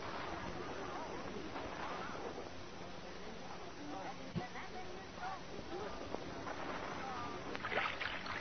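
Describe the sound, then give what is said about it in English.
Oars dip and splash through water in a steady, sloshing wash as a rowboat is rowed against the undertow in Chicago, with a few sharper splashes standing out. Faint voices seem to murmur underneath. “don't roll the boat so fast. I can't keep up with you.”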